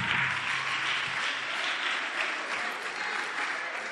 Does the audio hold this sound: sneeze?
no